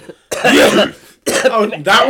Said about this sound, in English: The number of coughing breaks that he's going to have to edit out is just astronomical. I'm just going to leave them all in. Yeah, just let people listen to me hacking it up.